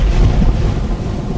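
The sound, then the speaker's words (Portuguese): A heavy, continuous storm roar with deep rumbling thunder and a dense wash of heavy falling hail and rain with lightning, over Egypt, loud throughout, with no voices. “Ele fez cair uma pesada chuva de pedra sobre todo o Egito. E a chuva e os raios caíram sem parar.”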